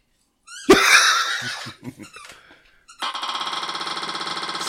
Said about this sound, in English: Well, I'll let you spin the wheel.